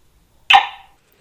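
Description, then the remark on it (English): A single sharp, loud bark from Abby, a cattle dog, saying hi, bursts out of silence and trails off quickly, with nothing else around it. “Abby, my cattle dog and presiding co-host.”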